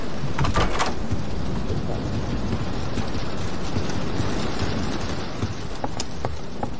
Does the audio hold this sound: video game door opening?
yes